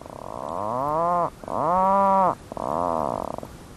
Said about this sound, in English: What you're listening to is the call of an Atlantic puffin, standing guard outside its burrow on the tiny island of Hurniken in the remote Rust archipelago of Arctic Norway.